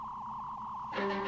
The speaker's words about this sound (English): So they're in Kirk's quarters and they hear the hum of a phaser.